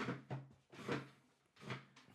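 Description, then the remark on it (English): A chair is dragged and shifted closer across the floor, with three rough scraping bursts in quick succession and a few soft knocks between them, no voices. “Hold on, I gotta move my chair closer.”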